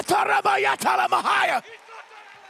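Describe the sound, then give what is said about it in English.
Loud voices shout over a few sharp hand claps for about a second and a half, then drop away to a faint, murmuring crowd. “Now begin to clap your hands and lift up your voice!”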